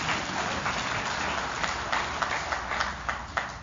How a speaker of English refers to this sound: Yeah, you should clap. It's a good thing.